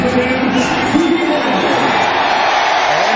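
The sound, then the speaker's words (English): A large stadium crowd of Philadelphia Eagles fans at Lincoln Financial Field gives Tim Tebow a standing ovation as he comes in for the first time in an Eagles uniform. It is a loud, unbroken roar, a dense wash of many voices with a few whoops and yells rising above it, holding steady throughout. “Exactly what you would expect in the reaction from the crowd.”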